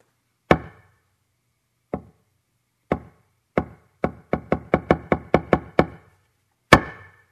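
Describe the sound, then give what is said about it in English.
A big, thick wooden han block, used in Zen to call people to practice, is struck with a hammer: sharp, resonant knocks start slow, speed up into a rapid roll, then end with one loud final blow. No one speaks. “You know, in Zen, when they talk about practice, the Han, which calls one to practice, big, thick, wooden block of wood that they hit, you know, with a hammer and they hit it.”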